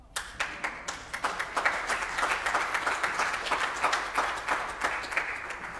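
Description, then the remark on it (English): An audience breaks into steady applause for the pastor's 23rd wedding anniversary, many hands clapping in a dense, crackling wash that holds at an even level for several seconds with no voices over it. “I know you're applauding out of sympathy for her, so we appreciate it.”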